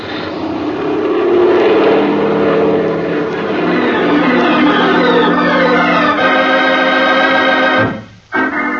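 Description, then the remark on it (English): A loud propeller airplane engine roars steadily with a droning, buzzing tone that shifts slightly in pitch as the plane is throttled up and climbs without the wheels touching the ground, heading back toward San Mateo airport; the engine briefly cuts and sputters near the end. “Okay, then I'm going to give it the gun.”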